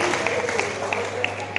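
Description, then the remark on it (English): An audience claps steadily, a dense wash of many hands with sharper individual claps popping out now and then, holding an even, moderate loudness throughout. “Oh, let's clap for the holy people.”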